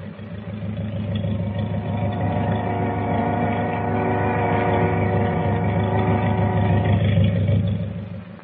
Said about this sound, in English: Wait a minute. What's that? Sounds like motors. It is. Hey, the boat's moving. She's pulling out.